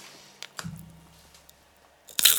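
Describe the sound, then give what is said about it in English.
Pringles potato chip crunching: a couple of soft clicks and a low hum, then a loud, crisp crunching bite at the very end, with no talking. “Some tasty crunch. Tunes there. Pringles, share the love.”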